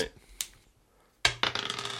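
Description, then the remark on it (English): A die is rolled in a tabletop game, clattering onto a hard table, followed by a quick run of bouncing, rattling clicks that settle within a second, landing on a three. “Right, no, that's the backup dice. You start with this dice first.”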